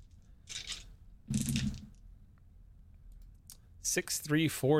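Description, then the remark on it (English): A heavy door screeches and grinds as it is pulled on, the noise echoing down a corridor: two rough, scraping bursts, a quiet pause, then a loud, high, wavering metallic squeal at the end. “Again, screeching and grinding noises, which echo out down the corridor.”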